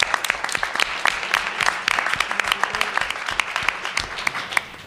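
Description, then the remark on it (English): An audience applauds steadily for about five seconds, many hands clapping in a dense, even patter with sharp individual claps standing out, sustained at a moderate level without any talking. “So if we could give a quick round of applause”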